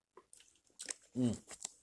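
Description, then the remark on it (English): Wet sipping and slurping of Gatorade in short bursts, followed by a brief voiced gulp or satisfied exhale, then a few more quiet mouth noises. “Oh, 1 second, I'm going to take a sip of Gatorade.”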